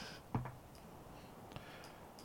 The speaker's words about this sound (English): I do want to roll a d20. Hold on. Wait a minute. Wait. I think I'll roll my crystal dice.